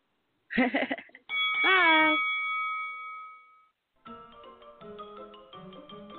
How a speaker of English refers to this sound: until next week, ring the bell.